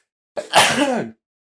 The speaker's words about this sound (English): Sneezing on a podcast, that's a new one.